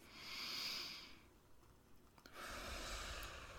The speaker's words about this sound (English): Breathe deeply and focus on the rhythm of your breathing.